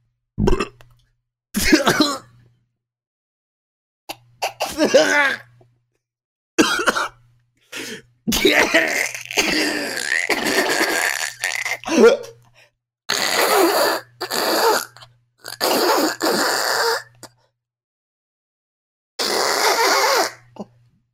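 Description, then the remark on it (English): A long bout of harsh, hacking coughs after swallowing a bug that flew into the mouth comes in loud, irregular bursts separated by short silences, with some throat-clearing and strained breaths between fits. No one speaks. “A bug flew in my mouth, and I swallowed it.”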